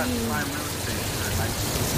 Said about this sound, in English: Yeah. If it wasn't fucking raining.